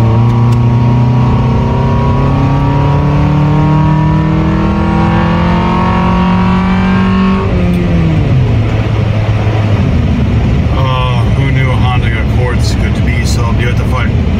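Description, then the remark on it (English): A stock car fitted with only an aftermarket air intake revs hard and accelerates with a throaty intake roar, its pitch climbing steadily, dropping briefly at a gear change, then building again, loud throughout. “Punching it in a stock car with just an intake.”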